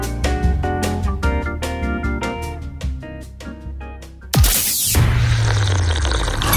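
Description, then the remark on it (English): A short burst of music gives way to a steady splashing trickle of coffee being poured into a cup, lasting a couple of seconds. “Coffee? A seventh coffee never hurt anyone.”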